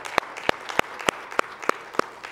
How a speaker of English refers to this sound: Let's give him another hand clap if you wouldn't mind, please.